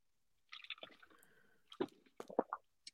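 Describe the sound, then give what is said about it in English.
A deep gulp of wine: wet, squishy mouth and throat sounds followed by a few distinct swallows in quick succession, with no talking. “Deep gulp of wine.”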